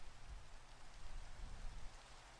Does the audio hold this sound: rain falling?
yes